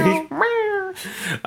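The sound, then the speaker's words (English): A cat meows several times in quick succession, loud, with one long drawn-out meow that slides downward in pitch between shorter calls. “No, you guys, my cat is the biggest part of my life.”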